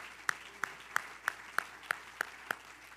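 An audience claps hands together in a steady, even rhythm, about eight sharp claps in three seconds, crisp and moderately loud, with no voices over them.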